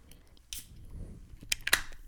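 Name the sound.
beer can cracking open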